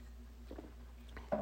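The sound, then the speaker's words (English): A few soft, wet slurping and swallowing sounds from someone taking a sip of Bud Light beer, faint over a low steady hum, with a slightly louder gulp at the end. “Great sip of beer right there.”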